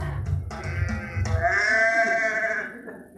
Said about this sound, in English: Sheep are such stupid animals. Sorry, I've just got to say.